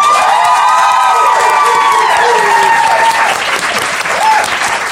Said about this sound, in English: Thank you very much, audience, for joining us. I'm afraid that's the end. Please may you clap and cheer now.